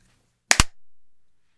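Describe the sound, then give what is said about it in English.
One loud, sharp hand clap, its crack split into two rapid bursts, followed by a short fading tail and then silence. Nobody speaks. “I appreciate the vigor of that clap.”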